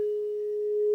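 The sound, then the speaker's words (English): A steady, pure sine tone at the pitch A holds unbroken for about a second, clean and alone, its level swelling slightly toward the end. “Yeah, because it just kept getting, the A one was very strong. It just kept getting louder and louder and louder.”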